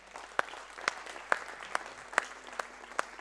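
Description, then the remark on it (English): Audience applause for a pastor after his sermon: a soft, steady patter of many hands with several sharper, louder claps standing out at a fairly regular beat, and no voices. “Let's put our hands together.”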